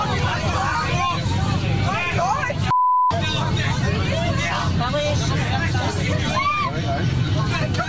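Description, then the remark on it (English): Loud, noisy chatter and overlapping voices of a group of men on a plane fill the scene, cut once near the middle by a short, steady censor bleep tone that drops out all other sound before the babble resumes. “Whoever has edited that audio has got a keen ear because they've known somewhere to put a beep in.”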